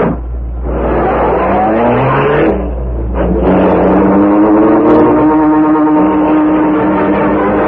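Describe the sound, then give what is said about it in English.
A car engine revs hard and accelerates, its pitch climbing through the gears in a loud, sustained roar with a brief dip before surging on again. “dragged the still unconscious man to the rear door of the building, and put him into the car.”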